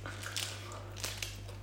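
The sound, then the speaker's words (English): Crunchy chocolate being bitten and chewed, giving a few sharp crackling crunches at irregular moments over a steady low hum, fairly quiet overall. “Well, I'm here eating my crunchy, man.”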